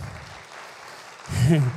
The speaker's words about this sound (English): Let's applaud the living God.